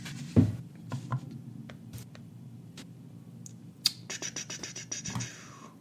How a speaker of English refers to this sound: So I'm going to make a little dice roll here. I'm going to ASMR this. I'm going to put it right next to the microphone.